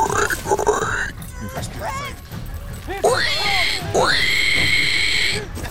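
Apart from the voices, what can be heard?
pig grunting and oinking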